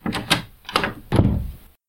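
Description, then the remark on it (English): A few metallic clicks and rattles as a door knob is turned, followed by a heavier, longer sound of a door swinging open, with no voices. “I'd never been through the door in front of me. Surely it would be locked. I turned the knob anyway.”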